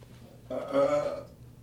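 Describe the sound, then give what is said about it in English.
A single throaty burp lasting under a second, rising out of a quiet low background hum and fading quickly. No one speaks. “Hold on, I gotta go over here to burp.”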